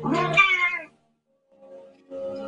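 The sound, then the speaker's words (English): A cat in a movie lets out one loud, drawn-out meow, then after a short silence makes softer, quieter mewing sounds. “You can keep Fluffy here. They eat cats in China.”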